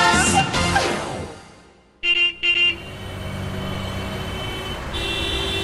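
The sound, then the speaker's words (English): Busy street ambience with passing traffic, a car rumbling by, then two short horn toots, followed by a steady wash of engine and road noise. No one speaks. “Well, I went to the streets to find out.”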